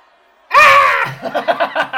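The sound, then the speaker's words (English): A person voices a loud, harsh, ferocious and feral goblin-style war yell, breaking into a rapid, rhythmic cackling burst right after, with silence before it. “Give me a goblin yell, just one.”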